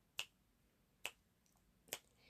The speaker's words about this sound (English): The frog began to snap his fingers.